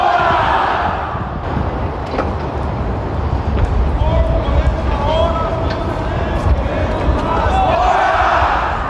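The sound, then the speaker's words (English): A rally of nearly 300 workers on the north steps of the Washington State Capitol shouts together in a loud, unbroken roar of overlapping voices, with individual raised calls rising briefly above the steady din throughout. “Listen to the shouting if you can.”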